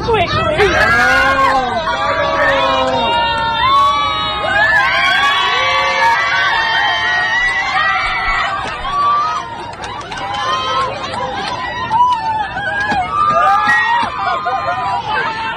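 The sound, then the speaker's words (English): Airplane passengers in a packed cabin cheer, whoop and shriek loudly together, egging on a flight attendant to open a bathroom door, with excited voices rising and falling continuously; a scream and a thud as the door opens cut through the din. “The scream, and maybe you heard the thud underneath it, is the door opening so everybody can see the guy standing behind the lady in the middle of doing something very naughty”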